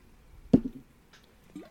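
Someone takes a drink of water: a sharp, hollow gulp followed about a second later by a softer swallow, with no talking.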